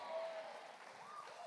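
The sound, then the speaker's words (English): An audience cheering and clapping, a steady, dense wash of crowd noise with faint rising whoops, sustained at an even loudness throughout without any single voice standing out. “You guys are rascals. Stop your cheering.”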